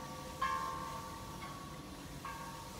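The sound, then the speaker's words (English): Buddhist temple bells in Thailand chime faintly, about three bright metallic strikes spaced unevenly, the first ringing on with a lingering mid-pitched tone, over a low steady background murmur with no talking. “So as the Buddhist bells ring here in Thailand, it's just so peaceful.”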